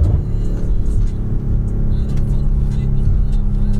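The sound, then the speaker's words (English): Pickup truck engines at a truck club gathering rumble loudly and steadily, their deep low drone rising slightly as they rev, a continuous throaty roar with no pauses. “We just came across... the fucking truck club, the bro. The truck club.”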